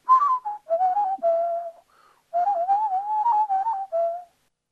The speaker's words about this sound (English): Whistling our way through Out of the Pan on a Sunday afternoon is our first broadcast from noon through 1 Australian Eastern Daylight Savings Time.